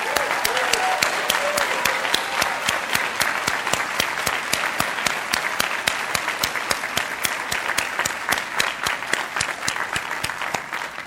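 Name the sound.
loud audience applause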